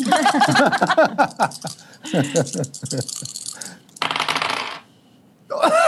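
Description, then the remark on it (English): A small twenty-sided die clatters and rolls across a hard tabletop in a quick series of clicks and bounces, an attack roll in a tabletop role-playing game that lands on a natural 20, with people talking and reacting around it. “That's a natural 20.”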